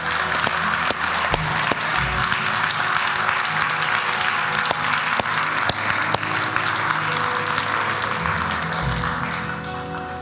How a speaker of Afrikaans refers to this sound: Kom ons gee net vir die Here eers 'n hande klap.